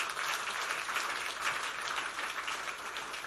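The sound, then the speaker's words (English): An audience claps together during a church sermon, a 'clap offering', in a steady, dense wash of applause that holds at an even, fairly loud level throughout, with no voices standing out. “Please, the clap offering is free.”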